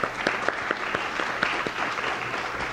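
Audience applause for Dr. Bredesen fills the whole stretch, a dense, steady patter of many hands clapping at a fairly strong, even level with no voices on top.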